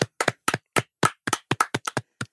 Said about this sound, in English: Round of applause.